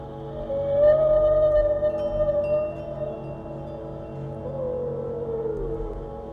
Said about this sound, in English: You realize it is a whale. Not just any whale, but a blue whale.